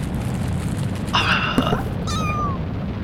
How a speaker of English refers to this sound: It's a kitten! Oh, those guys are cute! They're so cute!